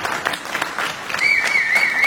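A church audience on Youth Takeover Sunday applauds to welcome two people invited up on stage, in a steady, dense patter of many hands clapping, and a high wavering whistle-like tone rises over the clapping partway through.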